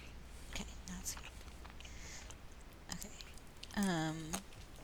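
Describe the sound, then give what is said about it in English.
Soft, muffled chewing of an American snack that is not very crunchy and not sweet, a few faint moist clicks rather than sharp crunches, followed by a brief voiced hum near the end. “But it's not very crunchy.”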